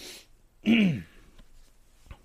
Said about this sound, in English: And sorry about clearing my throat and everything. A little bit dry today.